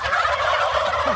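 A flock of turkeys gobbling together in a dense, continuous burst of warbling calls, fairly loud, with overlapping voices and no one speaking.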